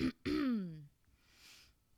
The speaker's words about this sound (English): Sorry, I've got the burps.